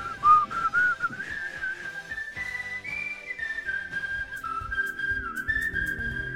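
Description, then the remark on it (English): A clear, melodic whistled tune at the ending of a rock song from 1981 carries over a full rock band backing with drums and guitar, sustained notes gliding up and down at steady, moderate loudness. “I love this ending here. The whistling.”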